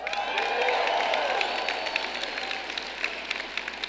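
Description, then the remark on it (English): A crowd claps and cheers together, a dense wash of applause with excited voices rising over it, steady and fairly loud for a few seconds before easing slightly. “And being raised by a mother who would clap me up just like that if I opened the door for an old lady”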